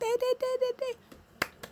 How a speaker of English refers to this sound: I'm clapping for myself.